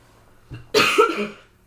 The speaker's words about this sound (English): I'm gonna cough.